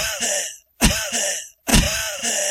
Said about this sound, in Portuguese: Você começa a respirar... Você já, só dá uma tossidinha... Acabou, já era.